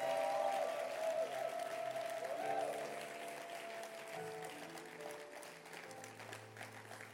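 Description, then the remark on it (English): A church audience claps steadily to bless the Lord in a dense, sustained wash of applause, with sustained musical tones and a faint voice beneath it, the clapping continuing at a fairly even level throughout. “Clap your hands and let's bless the Lord.”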